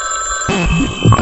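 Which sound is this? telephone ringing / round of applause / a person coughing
telephone ringing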